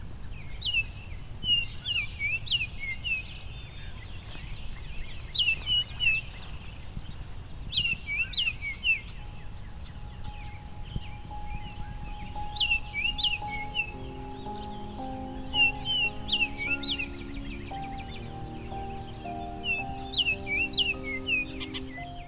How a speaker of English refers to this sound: Baltimore Orioles are bright, cheerful birds, not just in plumage, but also in the flute-like sounds they make. Each bright orange male sings a unique song.